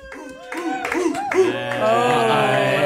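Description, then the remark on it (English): A crowd of office workers outside cheer and whoop, scattered shouts quickly swelling into a loud, sustained roar of voices with some clapping mixed in, lasting a few seconds. “Well, the crowd outside, we always gather a crowd from the office. The loudest cheer is the winner.”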